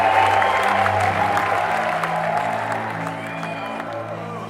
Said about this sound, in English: So we stood there and smiled and waved, while other people told our stories to the crowds. The crowds cheered.